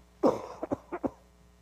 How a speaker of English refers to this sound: Excuse me, I got a cough and I don't know how this is going to sound.